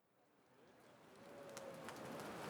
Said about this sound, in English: It's Thursday, June 1st, 1893. A soft rain is falling here in Chicago, Illinois, at the World Columbian Exposition.